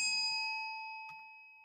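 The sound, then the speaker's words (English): A small bell rings once with a bright metallic strike, its clear tone lingering and slowly fading away; a faint soft rustle briefly interrupts midway through the decay. “I'll do this back and forth in the 15 minutes, but I'll stop my little bell now.”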